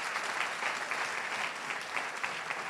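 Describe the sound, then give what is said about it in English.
Sustained applause from an audience clapping for El Shaddai (God) during a sermon, a dense, even wash of many hands clapping at steady volume with no voices rising above it. “Why don't you clap for El Shaddai?”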